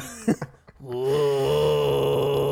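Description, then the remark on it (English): A few short breathy grunts lead into a sustained sung note with a rough, growly rasp produced from the chest, holding steady at a low-mid pitch and fairly loud for about a second and a half. “You have to start singing a note and then like do that growly thing, like the like that thing.”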